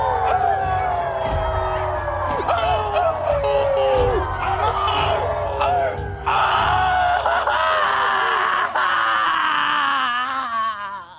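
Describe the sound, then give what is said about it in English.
A group of people howling together, a loud, sustained chorus of wavering, pitch-sliding cries that rise and fall, with overlapping voices continuing for several seconds. “Come on and howl with me now. Howl it out.”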